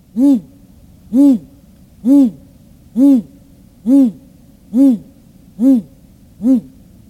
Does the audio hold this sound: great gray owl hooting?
yes